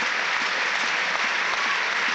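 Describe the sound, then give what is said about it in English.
A large stadium crowd applauds steadily, a dense wash of many hands clapping at an even, fairly loud level with no voices standing out, at an Everton home match against Fulham as injured player Louis Saha is carried off on a stretcher. “The applause is for Louis Sahar, who's off on a stretcher.”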